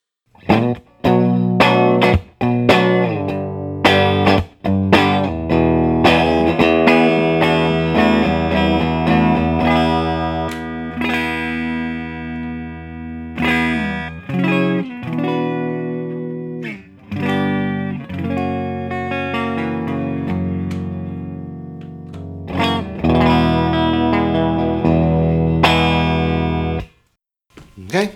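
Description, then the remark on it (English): A clean electric guitar rings out with strummed chords and picked single notes, bright and clear, sustaining between strums with a few quick pauses, played fairly loud without other instruments. “All right, let's establish our clean tone before we get into this.”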